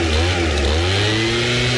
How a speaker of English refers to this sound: Neutral Bay homeowners want gardeners to be banned from using the petrol leaf blower, moving to electric powered ones.